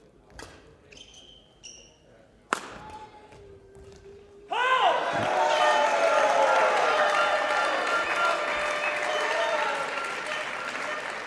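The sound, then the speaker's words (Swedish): A few sharp, isolated knocks, then the crowd at an old badminton match breaks into loud, sustained applause and cheering that carries on steadily to the end. “Ja, men man kan också få liksom, lyssna på gamla badmintonmatcher.”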